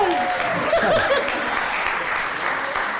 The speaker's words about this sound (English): Congrats. Big round of applause.